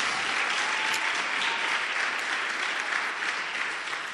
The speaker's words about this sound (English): Stand to your feet, let's bring the service to a close. Oh, if you have been blessed, then clap your hands properly.